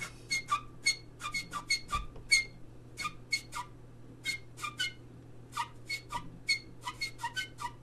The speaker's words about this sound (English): It's only partly a name that tune played on the snooker stick with the old blue chalks.